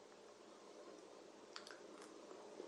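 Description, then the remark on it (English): A soft, steady fizzing hiss with a few small wet clicks and slurps midway as someone quietly sips sparkling water. No one talks. “This is sparkling water, by the way.”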